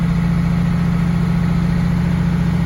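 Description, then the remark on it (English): A 1989 first-gen Dodge Cummins diesel truck engine idles steadily, a loud, low, throbbing rumble with a fast even clatter and no change in pace, with no voices over it. “1989 Dodge Cummins, the real first gen.”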